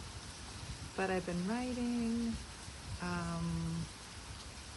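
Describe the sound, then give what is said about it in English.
A steady hiss of rain falls throughout, soft and continuous, while a person speaks a few words over it. “I know the sound of rain is quite lovely.”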